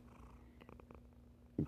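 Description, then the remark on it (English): A cat resting on a person's chest with its chin on a phone purrs in a low, steady rumble picked up by the phone's microphone, with a brief louder burst near the end. “If you're hearing that purring”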